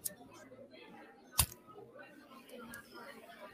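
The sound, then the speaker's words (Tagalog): A lighter being flicked to light a cigarette at an outdoor garden wedding: a sharp click right at the start and a louder snap over a second later, with a faint murmur of background voices. “May lighter ka? Ito oh.”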